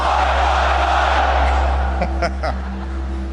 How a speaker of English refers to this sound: Well, I know that you all have a great Australian cheer. I want to hear it. So let me say first, Aussie, Aussie, Aussie.